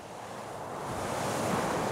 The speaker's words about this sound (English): Although the town of Homer is in southern Alaska, no one would ever think of it as southern on this midwinter day. The temperature is well below freezing, and flurries of snow dance in the blustery wind.